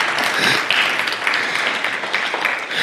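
A crowd breaks into steady, sustained applause, many hands clapping at once in a dense, even patter that stays loud for the full few seconds with no voices over it.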